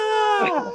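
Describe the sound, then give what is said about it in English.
A voice imitates the awkward scream from the trailer for the film The Mummy: a single sustained, high, harmonic-rich yell that holds steady, then wavers and breaks downward before cutting off, loud and alone. “It's just like it opens up and it's just him screaming like, ah!”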